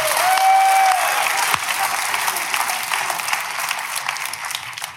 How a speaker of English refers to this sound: Oh, give me a golf clap. Give me something.